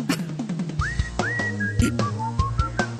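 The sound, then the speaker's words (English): A band member, a man in his underwear, whistles a lilting tune, with smooth gliding notes rising and holding over a steady backing of music with a thumping beat. The whistle is clear, no talking. “Now he's got the belly with the face paint and the person playing doing the whistling.”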